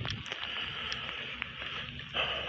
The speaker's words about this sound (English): Yeah, it is starting to pick up on the rain right now.